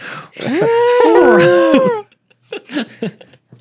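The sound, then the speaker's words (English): A person loudly imitates an elephant's trumpet: one long, wavering, strained call lasting almost two seconds, followed by a few short, softer vocal sounds. “Channel your inner elephant”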